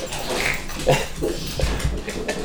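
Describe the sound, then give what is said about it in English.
Dogs scamper across a hard floor, their claws clicking and paws thudding in quick irregular bursts, with faint snuffles and rustling and no voices. “I think the next house you're going to need a podcasting studio with carpet in it so the dogs can run round and rat.”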